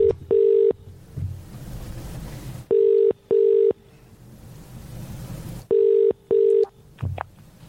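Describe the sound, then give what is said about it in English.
A telephone ringing tone purrs in pairs of short beeps, repeating three times with pauses between, clear over a low background rumble, with no one speaking. “I just want to make a phone call.”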